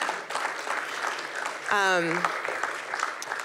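A crowd claps steadily in a dense wash of applause, with a single falling whoop rising briefly above it midway through.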